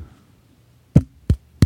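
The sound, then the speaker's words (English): Three dull, low-pitched knocks of knuckles on a hand, evenly spaced and fairly loud, with quiet between them and no talking. “I was like, is this going to pick up me knocking on my hand?”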